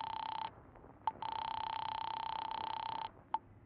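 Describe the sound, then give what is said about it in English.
A telephone being dialed in a drugstore phone booth: a steady, buzzing line tone drops out briefly around sharp clicks, then resumes and cuts off again before a final click. Clear, with no voices. “hurry into a drugstore phone booth.”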